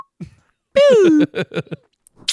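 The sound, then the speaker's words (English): A loud, short descending slide-whistle sound made by a voice, like an old cartoon comedy effect, followed by several quick, choppy bursts of laughter-like vocal sounds. “Just fucking that like old school comedy whistle sound effect place.”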